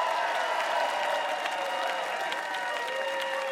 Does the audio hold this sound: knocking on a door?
no